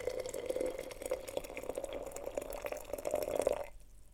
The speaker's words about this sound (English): Is your water boiling? Take down a teapot. Pour in water from your kettle and make some tea.